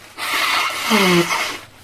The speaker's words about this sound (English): I've got a runny nose. I'm going to blow my nose. Do you mind? No, that's fine. Go ahead. I'll do it away from the microphone.